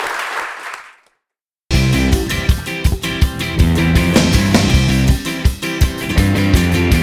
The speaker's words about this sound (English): So let's give it a Kris round of applause.